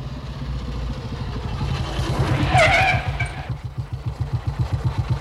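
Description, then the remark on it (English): A motorcycle engine revs hard and roars past, its whine climbing to a loud peak midway before dropping into a throbbing, pulsing idle-like rumble. “Should a motorcycle be driven at 100 miles an hour?”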